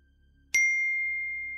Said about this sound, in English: When I sat back down, my phone pinged again.